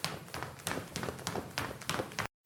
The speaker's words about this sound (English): As she's walking home, she stops by a telephone pole. She'd been hearing a rather creepy sound of footsteps following her. What is that noise? Is someone following me again?